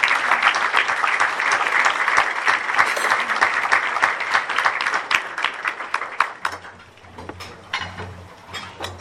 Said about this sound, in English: If you'll join me in giving a big round of applause for Representative Bobby Guerra.